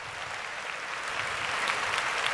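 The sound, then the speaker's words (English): A woman claps continuously, a dense, steady patter of bright hand claps at an even level with no pauses and no voices. “Look at that woman up there clapping for That's you.”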